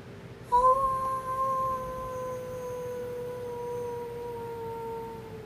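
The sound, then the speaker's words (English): A person imitates a wolf with a single long howl that rises in abruptly and holds a steady, slowly falling pitch for several seconds, clear, with no talking over it. “Oh, come on, howl for everybody. You know you want to.”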